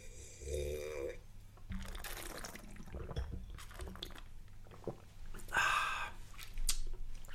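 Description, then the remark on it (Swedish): Brunello red wine is poured into a glass, a gurgling stream of liquid with a few splashy bursts and a brighter, ringing stretch near the end, with no talking. “Vi tar lite Brunello till smöret.”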